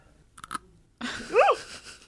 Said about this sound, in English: Do you want to hear me take a really tiny bite of chip? I guess. Ready? This is the ASMR part.